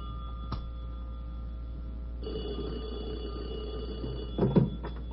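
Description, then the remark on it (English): A telephone rings with a steady electronic bell tone, fairly quiet, over a low constant hum, with a brief louder burst near the end; the call is for General Turgidson. No one speaks. “Should I get it? Yeah, you have to.”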